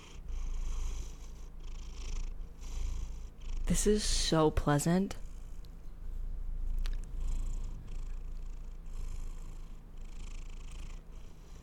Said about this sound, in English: Listener, write in. Should we just do an entire episode of Bugs purring? KSMR. ASMR. KSMR.